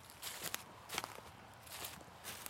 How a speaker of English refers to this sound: The quiet in the trees and the sound of leaves crunching under your feet.